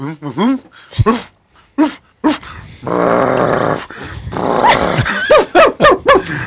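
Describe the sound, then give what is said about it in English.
A person vocally imitates a wolf, with rising and falling howl-like wails broken up by a stretch of rough, sustained growling, all fairly loud. “And however long it takes a wolf to communicate all this stuff we just talked about. Can we do a couple howls or something?”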